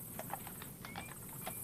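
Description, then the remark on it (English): Horse hooves clip-clop in a steady, even rhythm as a train of two horse-drawn coaches approaches a manor, sharp knocks repeating several times a second over a constant low rumble like rolling coach wheels, with no voices. “As our train of two coaches approached the manor, my gaze flicked once again to our driver, Nathan.”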